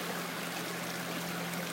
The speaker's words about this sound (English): And I can never quite remember being here at this stream, at this location, this time of year. It's just snow-free today. So we can hear the sound of the rushing water.